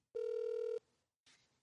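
A single steady electronic ringback tone on an outgoing phone call, lasting just over half a second, clear, followed by a brief muffled rustle on the line. No one speaks.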